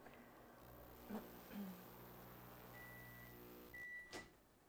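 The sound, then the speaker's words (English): A microwave oven runs with a steady, low electrical hum, joined by a few soft knocks and a thin, high whine that comes and goes toward the end. Quiet. “I'm playing with the plug, but I think part of it is we're just getting interference by running the microwave.”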